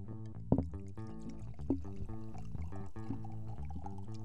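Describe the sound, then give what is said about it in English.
Wine pours steadily into a glass for several seconds, a continuous gurgle with rising tone and a few sharp clinks of glass near the start. “This is an exciting combination of pouring wine and urinating into glasses.”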